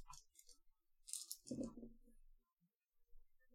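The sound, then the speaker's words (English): Three dice clatter across a hard tabletop: a few sharp, bright clicks first, then a short tumbling rattle that settles into silence. Fairly quiet, with no talking. “Let's see if Tradition can match that with his 3 dice.”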